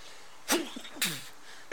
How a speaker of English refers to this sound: Excuse me. Gesundheit. Gesundheit. Thank you.